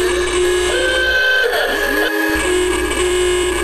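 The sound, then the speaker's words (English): Loud, sustained car horns honk together in a continuous blaring chorus from a crowd at an election night speech, with steady tones layered over one another and a brief dip partway through. No voices are heard. “Joe Biden gave his election night speech to a crowd of honking car horns there”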